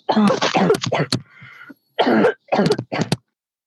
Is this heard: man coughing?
yes